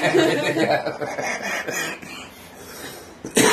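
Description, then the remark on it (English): A person with a cough picked up the day before coughs in several harsh, breathy bursts, ending with a sharp, loud cough. There is no talking. “I picked up a cough yesterday somewhere.”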